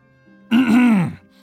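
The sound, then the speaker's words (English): A single loud throat clearing, voiced and drawn out for about half a second, standing alone against a quiet background with no talking. “cleared his throat, trying to get her attention back.”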